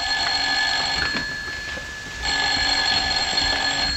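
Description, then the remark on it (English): A telephone rings in two long bursts with a short silence between them, a bright, steady, high-pitched jangling bell heard alone with no voices. “Keep on ringing him.”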